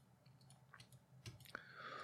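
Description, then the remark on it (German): A handful of soft computer mouse clicks, trying to open an online game shop in the Firefox browser that fails to load, come at irregular moments over a low background hum, followed by a faint, steady electronic tone. “Ich klicke drauf und es geht nicht.”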